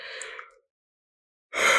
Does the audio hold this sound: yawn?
yes